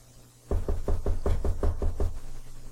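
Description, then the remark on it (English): A quick, steady run of about nine knocks on a wooden closet door, fairly loud, with a hollow low thump to each rap and no voices. “That's not the door. That's just what happens. It's the closet.”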